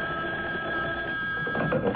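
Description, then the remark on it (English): A telephone rings with a steady, high-pitched electronic tone that holds for a couple of seconds over a low mechanical hum, with no voices. “That's what I was telling myself when the phone rang.”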